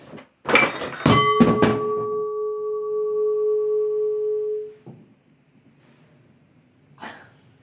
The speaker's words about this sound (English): Excuse me, there's a cat up there knocking things. You knocked a candle off. And so now there's wax all over the floor.